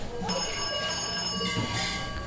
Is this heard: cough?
no